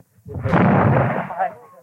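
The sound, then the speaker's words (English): A miniature cannon high on the city walls of Derry fires at midnight to open a Protestant parade, a loud boom that rolls into a long, echoing rumble over the Bogside, followed by a briefer second report near the end, in open air. “Two loud reports from miniature cannon high on the city's walls echoed over Catholic Bogside,”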